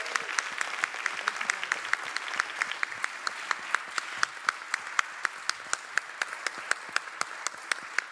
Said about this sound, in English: Like to give another warm round of applause to our guests. Thank you for coming.